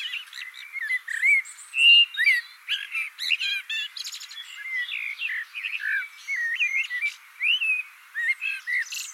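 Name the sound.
blackbird singing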